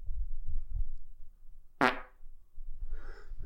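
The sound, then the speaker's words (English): A single short, buzzy fart noise with a fake, put-on quality bursts out loudly, then fades into a low background rumble with a faint squeaky blip afterward. “Sounded like a fake fart.”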